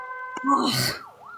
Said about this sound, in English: With the police. The police? You hear sirens as you're talking to him in the background.